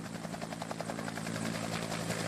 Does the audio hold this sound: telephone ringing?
no